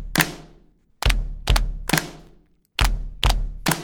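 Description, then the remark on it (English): Two dull, thumping knee slaps followed by a sharper clap, repeated in a steady rhythm to keep a beat, with no talking. “And you can join in by slapping your knees twice and then clapping, like this.”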